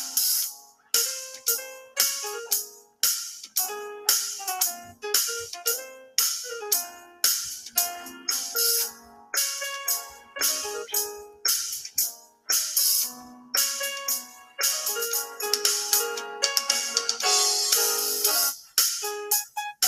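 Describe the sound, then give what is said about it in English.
A young man in his 20s plays keyboard music alone, a lively run of bright, ringing chords and notes struck in a steady rhythm, each decaying quickly before the next, with no voices. “He's on the keys, y'all.”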